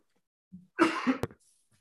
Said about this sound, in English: had to clear his throat. Me over there dried in the motherfucker.